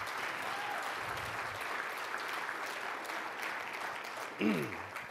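An audience applauds steadily for the event staff, a dense wash of clapping that holds at an even level, with a brief voice-like sound near the end rising above the clapping.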